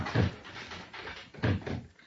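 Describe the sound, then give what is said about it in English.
A door handle is tried on a locked door, with two short, solid rattling clunks about a second apart, fairly loud, and no voices. “Try the door.”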